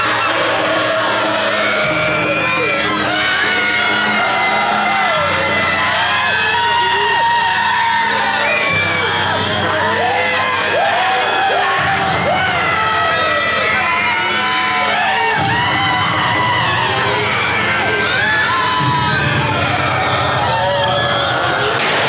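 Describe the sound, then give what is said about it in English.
A recording of a dense chorus of mentally disabled women and children screaming and wailing, high voices overlapping constantly and loudly for the whole stretch over a low, shifting droning rumble. “and it's all mentally disabled women and children screaming.”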